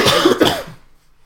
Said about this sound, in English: Both coughing at the same time. Same cough pattern.